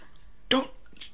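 A person gives a single short, sharp cough up close, a brief loud burst surrounded by near silence.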